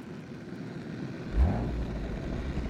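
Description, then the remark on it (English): A steady jet engine rumble, the engine running at 105% with about 2,600–2,700 pounds of thrust, suddenly deepens with a loud low thump about halfway through as the afterburner ignites, more than doubling the thrust; a heavier, sustained afterburner roar continues to the end. “Igniting the afterburner more than doubles this.”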